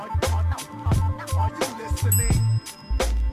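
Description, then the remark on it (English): A bright bell rings out partway through, its high tone lingering over a steady, thumping music beat with heavy bass hits. “Y'all hear the bell?”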